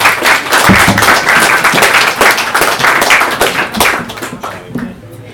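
A crowd applauds with dense, steady clapping from many hands, holding loud for about four seconds before thinning out and fading near the end.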